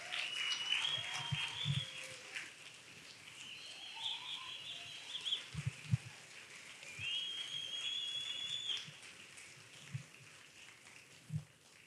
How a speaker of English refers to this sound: Well, we can keep cheering for them. They're not here yet.